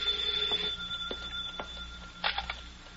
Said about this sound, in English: Hold it. Don't touch that phone. Hey, you. Me? Yeah, answer it.